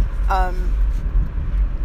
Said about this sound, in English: Excuse me, that was a burp. I'm sorry.